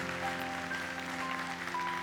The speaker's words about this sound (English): Yeah, you can give God a great hand clap of praise right there.